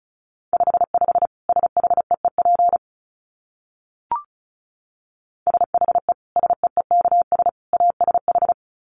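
Rapid Morse code beeps at 35 words per minute on a single steady mid-pitched tone, sent in two quick bursts of dots and dashes separated by a pause with a faint click. No voices.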